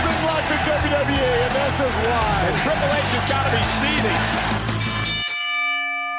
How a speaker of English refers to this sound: A lot of bells.